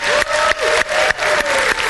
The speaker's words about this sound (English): can we make an obnoxiously loud round of applause welcoming our church family at their homes? So would you just join me?